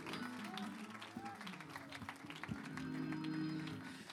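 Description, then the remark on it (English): An audience claps their hands together, a steady patter of many overlapping claps running throughout, with sustained voices and tones humming beneath the applause. “Oh, come on, somebody clap your hands.”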